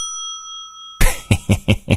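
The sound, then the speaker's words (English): A hand bell rings out with a clear, sustained metallic tone for about a second, then four or five loud, rapid clanging bursts follow in quick succession, prominent. “I got me a bell now, too.”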